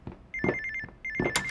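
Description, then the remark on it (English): A telephone rings with a rapid electronic warbling trill, sounding in two close bursts separated by a short pause. It is fairly loud, with no voices. “For God's sake, then answer that phone”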